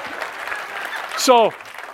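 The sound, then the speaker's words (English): Audience applause, a steady wash of clapping from many hands lasting the full two seconds, with a brief rising-and-falling vocal whoop cutting through near the end. “So now, you don't have to clap.”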